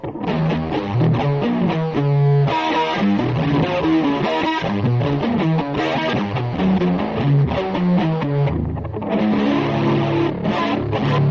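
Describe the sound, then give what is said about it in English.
A loud, distorted electric guitar plays a song's bridge, a continuous melodic passage with chordal textures and effects, steady, with no voices. “Play this bridge again. I love this bridge so much.”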